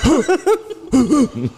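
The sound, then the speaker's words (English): A person imitates a dog's wheezy, coughing bark: a string of short, raspy huffs, fairly loud, with a brief gap before a second quick burst. “Sounds like he's having like a little baby asthma attack.”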